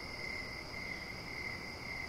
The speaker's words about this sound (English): We sat on their porch, feeling the humid air pleasantly rest on our skin, and listened to the crickets.